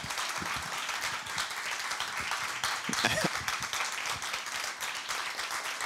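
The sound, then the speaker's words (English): A crowd applauds steadily to welcome Tim Ferriss at a Creative Live event, a dense, continuous wash of many hands clapping with no pauses, holding a fairly even loudness throughout, with a brief swell near the middle and faint voices mixed underneath. “That is a lot of clapping.”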